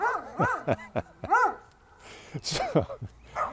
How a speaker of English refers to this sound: It's just like, lift up your eyes, listen to the barking dogs in the backyard, and the barking dogs just jealous of Bud because Bud's got a good owner.